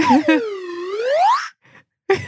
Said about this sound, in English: Did you bring that horn, that The slide whistle. Yeah. Yeah, let's get the slide whistle. It's never too far away.